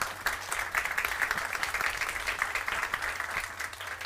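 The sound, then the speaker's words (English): A crowd applauds steadily for members of a church administrative ministry team called to the stage, many hands clapping at once in a dense, continuous patter that holds at an even, moderately loud level throughout, with no voices standing out. “Can we give these awesome people a wonderful hand clap?”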